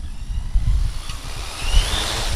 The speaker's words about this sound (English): The quadcopter zips 300 feet into the air, directly above our heads, pauses for a moment, and then begins to move. Now it's just turned to the east, and it's going to start doing its lawnmower pattern.